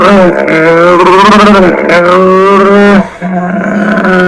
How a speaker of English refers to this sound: Hey Google, I can hear it again. What sound does a camel make? This is a camel.